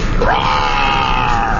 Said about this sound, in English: Oh, that was a sick sounding roar.